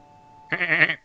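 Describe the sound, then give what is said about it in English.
A single loud goat bleat with a quavering, wavering tone that lasts about half a second after a brief near-silent lead-in. No voices accompany it. “There's that ghost goat.”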